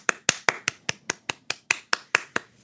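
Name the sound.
hand clapping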